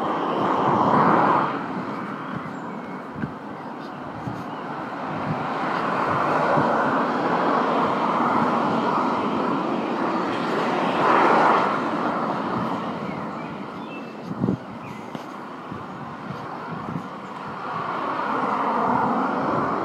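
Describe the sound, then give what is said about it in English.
Steady roar of tyre noise as cars pass on the road by a small bus shelter in Whitley, UK, tyres rubbing on the road surface, swelling and fading in several waves with no break, and no one speaking. “They're very noisy cars, aren't they?”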